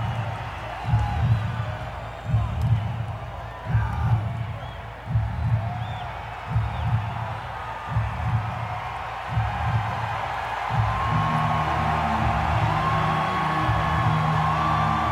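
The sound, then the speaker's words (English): A loud concert crowd cheers and whoops over a steady, rhythmic pulse of chanting or stomping, and a low, sustained musical drone swells in for the last few seconds. “See, the crowd's, like, pumped.”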